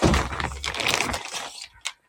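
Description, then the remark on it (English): A clear plastic bag crinkles and rustles loudly for over a second, a dense, crackly, papery texture, then goes quiet before one last short crackle, as it is put on top of items to keep them separate. “Plastic bag I want to put like on top of them to just keep them sequestered.”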